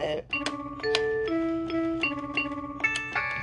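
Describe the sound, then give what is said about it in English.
A bell rings out a clear, sustained note D several times in quick succession, the tone shifting slightly between strikes, with sharp clicks and faint background noise. “D on the bell,”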